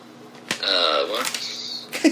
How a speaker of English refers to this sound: So anyway, roll the dice. You've gotten different ones so far. I know. It's kind of amazing. Let's find out if we do it again.